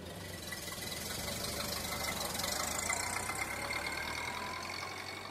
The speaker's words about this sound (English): And the car dusted away down the road.